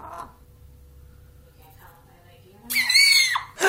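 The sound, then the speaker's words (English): A chicken sneezing: after a few quiet seconds comes one sudden, loud, shrill burst, harsh and squealing like a tiny screech, lasting under a second before cutting off. “Okay, so put this in the show notes, please, so that everyone can witness the amazing sneezing chicken.”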